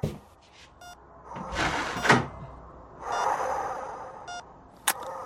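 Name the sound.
door being pulled shut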